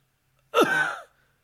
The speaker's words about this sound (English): So I always have a cough in my throat, no matter what. I've always got something through it.